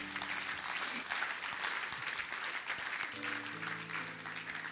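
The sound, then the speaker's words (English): An audience claps for the Lord Jesus in a dense, continuous wash of applause that holds at a loud, even level throughout. Faint sustained organ or keyboard tones play underneath, and no voices speak. “Clap for the Lord Jesus.”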